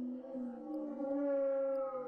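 An eerie bowed waterphone wails in a sustained, wavering metallic howl, its pitch bending slowly up and down, close and steady throughout with no voices.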